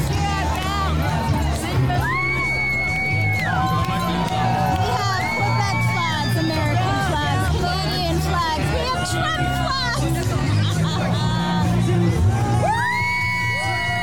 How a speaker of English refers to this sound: This is in Ottawa, Canada, today. Protests as well, and it seems it's building up steam with more people arriving. I see a Trump sign right there.